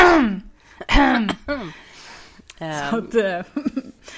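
A person clears their throat several times in quick succession, rough voiced rasps and bursts with short pauses between them, fairly loud and with no talking.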